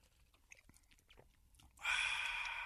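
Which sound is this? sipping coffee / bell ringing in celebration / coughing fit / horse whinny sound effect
sipping coffee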